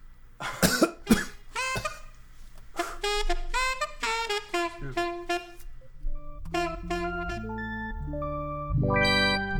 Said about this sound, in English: All right, this gets no claps and a few coughs from the audience.